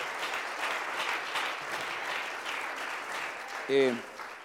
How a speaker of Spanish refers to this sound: Le da un aplauso usted a la palabra del Señor. Can you give a clap offering to the word of the Lord?